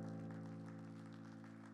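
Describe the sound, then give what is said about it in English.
An audience claps steadily as a hand clap offering to the Lord, a dense, continuous wash of hands, blended with a sustained organ-like chord holding underneath throughout; no one speaks. “Come on, give the Lord a great hand clap offering today.”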